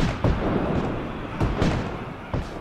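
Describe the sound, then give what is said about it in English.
Heavy gunfire and booming artillery from an 1862 firefight between a small army and Union troops, in the rain, rumble through a dense, continuous battle din, with sharp loud blasts at irregular intervals standing out above the constant roar. No voices are heard. “Anyway, John's small army turns and faces the Union troops, and they get into a serious firefight.”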